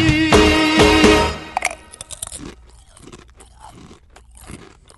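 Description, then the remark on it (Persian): A man eats potato chips for a minute: loud, dense crunching for the first second and a half, then a string of sharper, quieter crunches and chewing sounds at uneven intervals. No one speaks. “این آقا یک دقیقه چیپس خواهد خورد، گوش میکنیم.”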